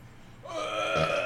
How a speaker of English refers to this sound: I care. Jesus Christ. That's how I burp, sorry.